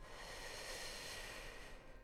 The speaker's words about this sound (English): So with the breath, we're going to just take some long sips of breath. So inhaling through the mouth like you're breathing in through a straw. Drinking in the breath as full as you can.